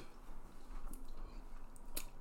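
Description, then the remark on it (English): Soft chewing of a whole gummy worm shoved into the mouth, with quiet squishy mouth sounds in an irregular rhythm over a low background hum, ending in a sudden louder burst. “Are we going to just sit and watch you chew gummy worms for a while because it's too chewy?”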